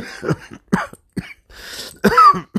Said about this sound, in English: Remember, I got a collapsed lung. That's why I'm coughing.